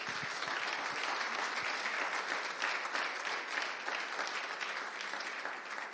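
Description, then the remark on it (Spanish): A church audience applauds the Lord, a dense, continuous wash of many hands clapping at an even loudness for several seconds, with no voices standing out. “Démosle fuerte aplauso.”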